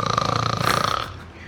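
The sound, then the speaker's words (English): A single rough, buzzy snore with a fluttering rattle lasts about a second, then trails off into a quieter breathy tail. No one talks over it. “We play that again, please. The doo-doo? Which one? The snoring.”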